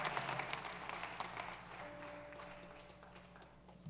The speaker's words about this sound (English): And everybody said amen together. And let's clap and praise God and give him honor. Amen.